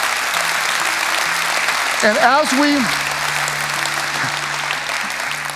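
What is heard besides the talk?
audience applause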